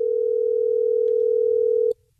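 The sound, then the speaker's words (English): A steady, unbroken telephone dial tone hums loudly for about two seconds as a radio show phones a caller, then cuts off abruptly with a faint click as the line connects. No one speaks. “are you ready for us to get him on the phone?”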